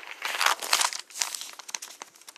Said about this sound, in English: Sorry, my paper won't turn.